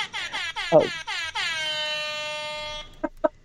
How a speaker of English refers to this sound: We'll find a doorbell sound. Hold on. The rap air horns? I got one of those.